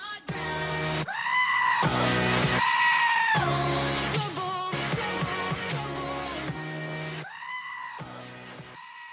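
Goats scream in loud, drawn-out bleats spliced into an upbeat pop song in an internet remix, their wavering cries repeating in rhythm with the music as if singing along.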